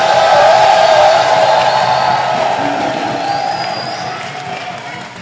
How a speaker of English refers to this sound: clap your hands for the Lord and give the Lord a shout of victory.